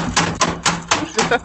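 Hard typing on a keyboard: a steady run of six or seven loud, sharp key strikes in quick succession, each one a heavy clack.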